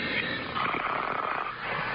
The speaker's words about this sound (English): Is the coach shaving in the background there? Or snoring? Snoring.